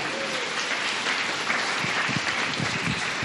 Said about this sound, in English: So remember to keep that round of applause going until he gets the microphone.